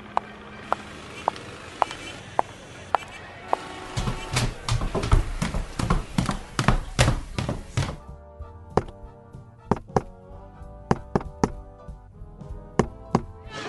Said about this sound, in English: I would like to come in, sir. I did the secret knock. I didn't hear no secret knock.